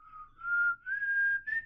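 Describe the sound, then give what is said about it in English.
A person whistles a short, breathy tune, a few gliding notes that climb gradually in pitch, with no talking around it. “Yes, he whistles a thing.”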